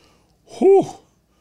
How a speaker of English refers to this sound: I think the camel farted. Pretty much what he says. It relieved itself